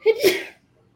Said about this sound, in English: And sorry, I got a sneeze.